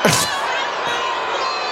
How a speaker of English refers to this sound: Is that everybody booing? That's somebody booing. That's some booing and cutting part of the mic.